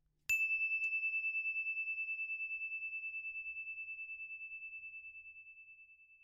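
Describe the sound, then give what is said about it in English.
A single clear story bell is struck once to signal that a story will begin, ringing out alone, its bright, pure tone shimmering with a gentle wavering pulse as it slowly fades over several seconds. “When you hear the story bell, put your hands in the air, and then the story will begin.”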